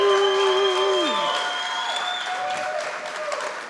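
Steady crowd applause runs for a few seconds, with cheering mixed in, beneath sustained ringing musical tones, one of which bends downward in pitch early on.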